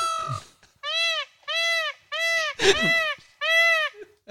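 A peacock calls out in a series of five loud, high, nasal wails, each about half a second long and evenly spaced, with a rougher, harsher cry mixed in partway through.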